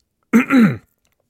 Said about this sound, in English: So, according to IMDb, you already know I have to clear my throat real quick.